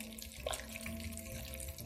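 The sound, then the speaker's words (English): Wet, squelchy sloshing as a hand, held like an extended claw, mixes meat through a liquid marinade, a steady churning of liquid and soft solids with no voices. “Just put it into the meat and start to mix the meat, okay?”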